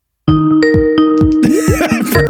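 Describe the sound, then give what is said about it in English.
A bright electronic bell chime plays a quick run of ringing tones, about eight notes in a lilting pattern, loud with no talking. “Saved by the bell, baby. Saved by the bell.”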